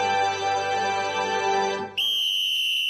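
A sustained tonal passage gives way to a single loud, shrill whistle blast, like a referee's whistle, held steadily for about a second until the end.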